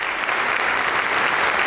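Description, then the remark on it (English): Steady, dense applause from Illinois legislators, a continuous wash of clapping that holds at an even, fairly loud level throughout, with no voices rising above it. “Wow, a roaring the cheers of the crowd of the Illinois legislature.”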